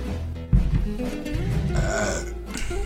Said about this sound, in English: All right, so, I'm gonna try. We gotta belch away from the mic.